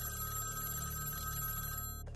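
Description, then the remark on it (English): A telephone bell rings in an apartment at 9:20 p.m., ringing continuously with a bright metallic trill, steady and fairly loud, then cutting off abruptly near the end. “Soon after she leaves the apartment, at 9:20 p.m., the phone rings.”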